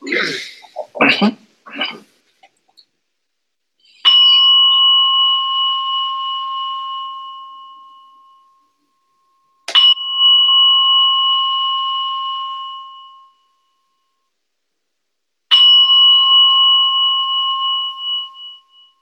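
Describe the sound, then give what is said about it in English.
A bell is struck three times at slow, even intervals, each clear ringing tone sustaining and fading for several seconds, rung by a participant in Canada to start a session. A brief burst of voice-like sound comes just before the first strike. “Would you ring the bell and get us started?”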